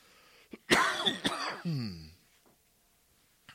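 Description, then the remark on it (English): A loud cough: two sharp, rough bursts followed by a drawn-out, gravelly throat clearing, then quiet apart from a faint click near the end. No one speaks. “Once again, sorry about my cough tonight.”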